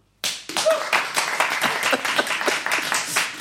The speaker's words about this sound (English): I'll throw this over to our live audience. Did those teens totally deserve it? All those who think they did, applaud now.